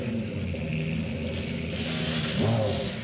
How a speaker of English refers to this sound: That is the Glickenhaus that you can hear revving right there. You can hear those turbos spooling away as well.